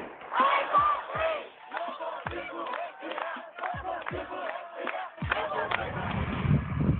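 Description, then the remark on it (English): A large crowd of protesters chants George Floyd's last words "I can't breathe" in unison, loud rhythmic shouted phrases repeating steadily, with occasional dull thumps beneath and a swell of mixed crowd noise toward the end. “And some of Floyd's last words, "I can't breathe," are now being carried and chanted by protesters around the world.”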